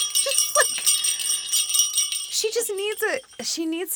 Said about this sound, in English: She needs some sort of jingle bell.